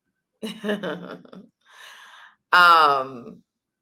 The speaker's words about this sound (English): I'm so sorry. Forgive me for yawning. And also forgive me that my energy is a little lower today. I'm really tired.